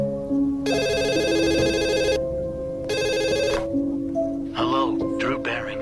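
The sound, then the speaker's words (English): A landline telephone rings in two bright, buzzing bursts, a long ring then a shorter one, over a steady low musical drone, with a voice starting right after, in Drew Barrymore's Scream-themed TikTok video. “Put the landline away.”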